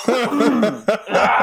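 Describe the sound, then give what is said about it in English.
A few raspy coughs come in quick succession, each a sharp burst trailing into a voiced, almost chuckling rasp, with brief pauses between them. “Let's get all the coughs out of the way.”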